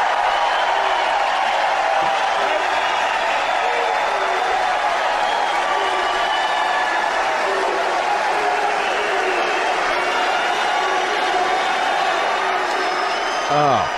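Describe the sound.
A large rally crowd roars and cheers continuously, a dense wall of overlapping voices with occasional whoops and shouts rising above the steady loud din.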